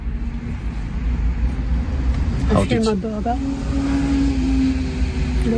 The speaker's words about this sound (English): So we're back in the car.